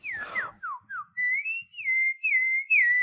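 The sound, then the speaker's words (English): A person whistles a short series of chirpy tweets imitating a bird, quick rising and falling notes in a lively run, clear with no talking. “I'm known for my whistling.”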